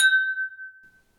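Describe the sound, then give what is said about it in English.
Wine glasses clink together once in a toast, a bright ring that hangs as a pure tone and fades slowly over about a second, with no voices. “Cheers.”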